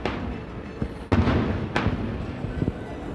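Fireworks booming: two sharp, loud bursts about half a second apart over a steady crackling rumble, followed by a few fainter pops, with no voices.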